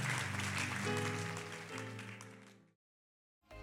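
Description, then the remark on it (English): An audience at Anchor Church claps hands at the close of a service, a dense, steady wash of applause over sustained musical tones, then it cuts off abruptly into silence before sound briefly resumes. “Clap your hands.”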